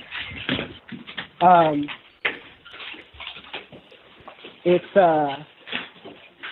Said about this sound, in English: But hold on, I'm gonna go inside and just brace yourself for dogs barking.